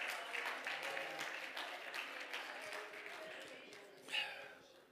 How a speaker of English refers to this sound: Oh, clap your hands and praise him this morning. He is worthy of our praise.